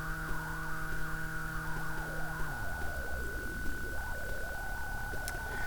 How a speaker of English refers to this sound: filter I'm messing with right now is my diode ladder filter, which I on purpose made kind of similar to the 303, the filter inside the 303, which you can hear that sort of whiny, chirpy, especially if I reduce the pitch and just use one oscillator.